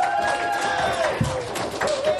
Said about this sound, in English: But, guys, a big round of applause here in the crowd.